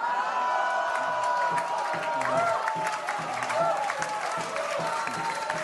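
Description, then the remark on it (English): An audience breaks into sustained applause mixed with cheering, whoops and scattered shouts in response to a joke. The noise stays loud and steady for several seconds, with no single voice standing out. “Don't clap at that.”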